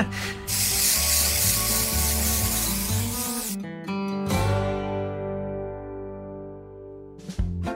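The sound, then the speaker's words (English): A long, steady hiss of antiperspirant aerosol spray lasting about three seconds, followed by a couple of short bursts and one more quick spritz near the end, all over ringing background music. “And hey, that antiperspirant spray worked!”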